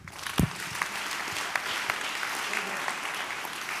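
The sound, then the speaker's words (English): An audience claps their hands in praise to God in a steady, sustained wash of applause, with a few sharper individual claps standing out and scattered voices mixed faintly underneath. “If you got away, you can clap your hands better and give God a praise right now.”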